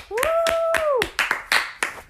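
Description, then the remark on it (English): An audience at The Roundhouse claps in a burst of applause, with loud individual claps landing irregularly, while a sustained high-pitched whoop rises over the first second and fades. “Can we get a huge round of applause for everyone that's here tonight?”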